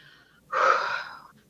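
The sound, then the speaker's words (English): A single deep, audible breath during a calming breathing exercise, a sharp airy inhale or exhale lasting under a second, fairly loud against a quiet background. “So I found that breathing and counting back and going 5, 4, 3, 2, 1.”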